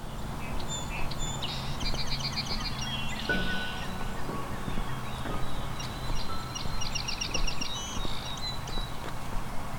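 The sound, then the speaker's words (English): Several birds sing at once in a lively chorus on a warm, sunny spring morning, with bright repeated trills and chirps rising over one another above a steady low rumble in the background. “A warm, sunny morning in spring can inspire a diverse chorus of bird songs.”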